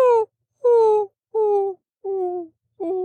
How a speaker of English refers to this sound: The sound of the greater roadrunner. It sounds like a whimpering puppy or like one of those windmills that needs greased. It's a whining little sound.